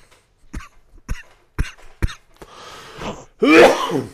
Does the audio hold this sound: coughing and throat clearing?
yes